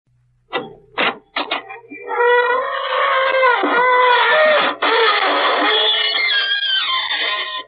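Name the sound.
creaking door opening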